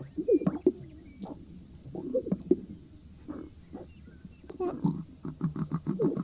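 Low, grunting snorts and snuffling from an animal's lekking call, irregular, with rapid pulsed bursts near the end, much like a pig rooting around. No talking.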